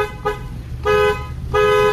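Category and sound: vehicle, car horn honking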